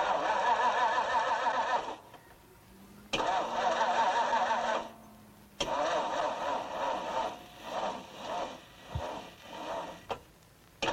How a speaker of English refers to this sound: Isn't that the quietest engine you've ever heard in your life?